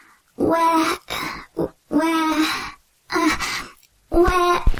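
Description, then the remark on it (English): A donkey brays loudly in a run of about five harsh, wheezing hee-haw blasts separated by short gasping pauses, with no talking. “Where naughty donkeys listen to podcasts.”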